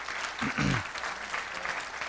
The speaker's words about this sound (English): And so to the team, I just want to say thank you guys for all that you've done and your service. And again, thank you for being here. Could you give them a round of applause for me if you would?